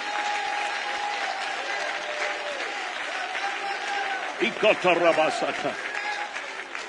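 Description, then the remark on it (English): An audience claps steadily in praise of the Lord, a dense, continuous wash of many hands. Midway through, voices rise over the applause with brief loud calls before the clapping carries on. “Or you ought to clap your hands unto the Lord and bless the Lord with all of your heart.”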